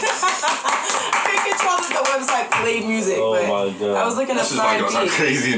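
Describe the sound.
Several people clap together in a quick, loud burst of applause, with voices joining in about halfway through as the clapping thins out under the talk.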